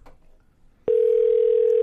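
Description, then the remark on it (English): A landline phone line, a number found on a website, rings from the caller's side: after a brief faint rustle, a steady, loud, mid-pitched electronic ringing tone starts abruptly and holds unbroken to the end. “It's a landline. It's going to ring forever.”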